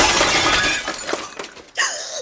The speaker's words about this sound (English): Who is that man that just crashed through the window?